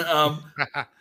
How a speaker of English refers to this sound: I'm about to sneeze.